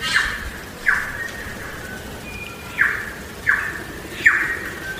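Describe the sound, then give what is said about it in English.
Bright, ringing bird calls repeat every second or so against a steady outdoor hiss at Tawharanui Regional Park, just north of Auckland, New Zealand, several birds sounding out in turn: a mix of bellbird, tui and chaffinch calls with no one talking. “You're hearing bell birds, tuis, chaffinch.”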